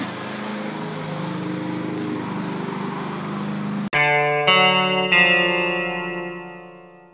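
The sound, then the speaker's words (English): A lawn mower engine drones loudly and steadily for several seconds as someone mows, then abruptly changes into a buzzing, tonal whine with a couple of sharp clicks, sounding processed or distorted. No one speaks. “Got to go back to mowing.”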